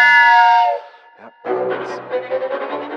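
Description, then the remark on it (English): A loud, sustained train whistle blasts for under a second and cuts off. After a short pause, a busy rumbling clatter follows, like a train moving along. “But there was only one direction now. To Marseille. More fucking trains.”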